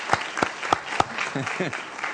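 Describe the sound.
An audience applauds a top student, with a few sharp, evenly spaced claps standing out at the start over a steady wash of clapping. A man's voice briefly calls out partway through.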